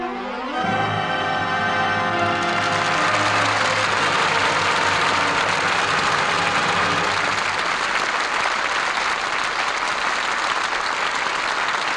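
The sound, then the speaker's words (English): A theater audience breaks into loud, sustained applause as the curtain falls on a performance of All My Sons with Burt Lancaster, Edward Arnold, Scott Brady and Ann Pierce, dense and steady from start to finish, while a lingering musical chord fades away beneath the clapping. “The curtain falls on All My Sons, and that applause is our thanks to a stellar cast for their really fine performances.”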